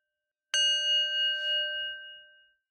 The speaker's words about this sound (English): Let's begin with the bell.